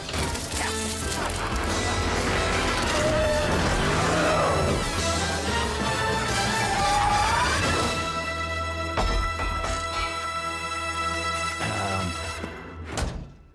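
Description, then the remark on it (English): A loud, chaotic car chase with roaring engines and crashing impacts, a dense wall of noise that keeps up throughout before a few final sharp bangs near the end. “I just wanted a longer car chase.”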